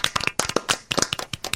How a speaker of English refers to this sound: Good golf clap.